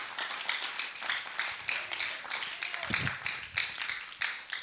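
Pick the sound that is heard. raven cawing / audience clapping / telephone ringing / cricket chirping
audience clapping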